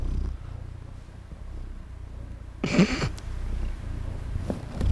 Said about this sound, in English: Our cat is right here. Hi, Frank. He's just rubbing his head on the microphone. I can't even really hear him purr.